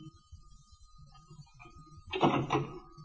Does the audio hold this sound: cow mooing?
no